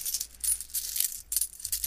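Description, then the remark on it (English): Coins clink together in a few quick clusters of bright metallic jingles, fairly soft, like coins being counted out by hand. No voices are present. “As the sun was setting and everybody was closing up their shops, the perfume merchant looked into the hole in the wall, and he saw his neighbor, the oil merchant, counting up all the coins that he had made for the day.”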